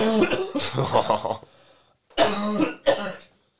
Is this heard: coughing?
yes